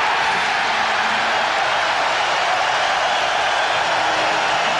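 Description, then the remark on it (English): A large crowd on its feet roars in a steady, unbroken wash of noise at a Knicks versus Indiana Pacers basketball game as Indiana calls a timeout trailing 15-2, loud and filling the arena, with no distinct voices standing out and no pauses. “The crowd is on their feet. They're roaring.”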